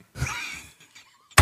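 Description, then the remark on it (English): Knocking on a hard surface to buzz in during a quiz game, loud: a resonant thump with a ringing tail, a few faint taps, then a sharp, louder knock at the end. “I knocked. He knocked.”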